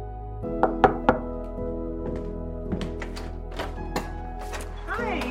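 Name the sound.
knock on the door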